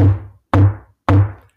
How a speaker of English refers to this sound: Come closer. Hear the knock on the door.